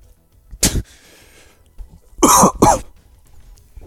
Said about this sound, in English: Were you trying to cough the word gay? Because I didn't hear it. I just heard a cough.